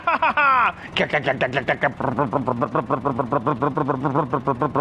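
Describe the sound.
A voice imitates a tractor engine used as a getaway vehicle: a rising rev, then a steady, rhythmic putt-putt chugging that keeps a fairly constant pitch and loudness as it pulls away.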